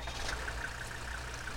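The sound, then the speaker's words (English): A car engine idles at the start of a song with a steady, low rumble that holds even throughout, fairly quiet, with no voices over it. “Starts with a car.”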